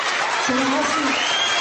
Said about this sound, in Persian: میبینید چه جوری سوت و دست میزنن؟